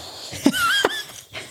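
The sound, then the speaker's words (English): A dog snorts twice in quick succession, with a thin, high wheezing whistle drawn out between the snorts, then a soft breathy exhale. No one speaks. “ASMR with real dogs.”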